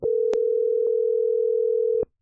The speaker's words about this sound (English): we're going to go ahead and call Mr. Mike and get him on the phone